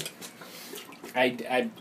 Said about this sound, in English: I'll just let the toilet speak for itself. Oh, God. There's some paper coming out. Oh, God. It's got some splashes. Oh, God.